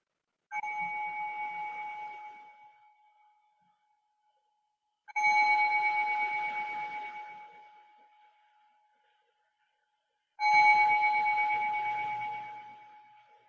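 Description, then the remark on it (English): Three meditation bell strikes, evenly spaced about five seconds apart, each a clear metallic ring with bright harmonic overtones that slowly decays into silence before the next, marking the beginning of the next phase of meditation practice. “So remembering those bells mark the beginning of this next phase of practice.”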